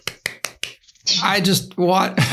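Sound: soft golf clap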